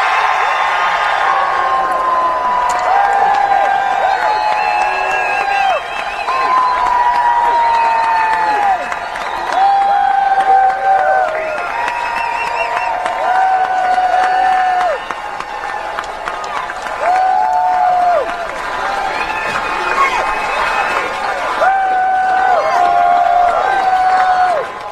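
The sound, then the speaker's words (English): A crowd cheers and applauds loudly and without a break for about twenty-five seconds. Steady clapping runs underneath while high whoops and shouts keep rising over it. The crowd is responding to a speaker declaring himself an independent candidate for president of the United States. “Nice crowd there.”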